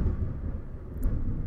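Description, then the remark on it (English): A deep, steady rumble of thunder rolls through the whole moment, heavy in the low end and fairly loud, with no voices over it. “Hear the thunder?”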